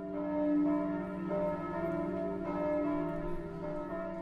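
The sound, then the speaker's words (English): Church bells ring out in a steady peal, fresh strikes arriving roughly every second over long, humming overtones that blend together. Moderately loud, with no voices present. “And we hear the bells ringing at one point, and so it seems like there is no hope and that there may not be any people left.”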